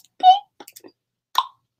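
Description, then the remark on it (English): A voice imitates the cork of a champagne bottle popping as it is opened: a resonant mouth pop, then a few soft clicks and a second short, hollow pop, all moderately loud with no fizz afterward. “So I'm going to open the bubbly and pop the cork.”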